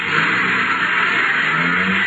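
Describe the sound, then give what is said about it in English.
A car engine roars and revs loudly, a steady throaty rumble with a rising growl as a man hops into his car and drives off fast. No voices are heard. “Hopped into his car and took off like a scalded skunk.”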